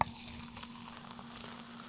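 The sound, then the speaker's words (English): A fizzy drink is poured into a cup, giving a steady, soft crackling fizz with a faint constant hum underneath and no talking. “Now let's pour it into the cup.”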